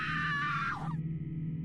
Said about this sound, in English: you hear a piercing scream from somewhere outside the tent.